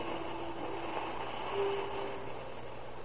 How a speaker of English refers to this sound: At 7:45 on the morning of October 19, 1931... train number 3 rolls into the Southern Pacific Station from Phoenix, Arizona.